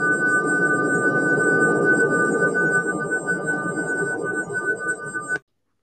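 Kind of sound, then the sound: sound effect, ringing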